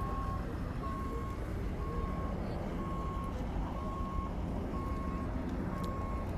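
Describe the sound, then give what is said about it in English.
An ambulance's reversing alarm beeps steadily at Griffith Park Observatory, about seven evenly spaced tones, heard over a constant rumble of engines and outdoor background noise. “Ambulance.”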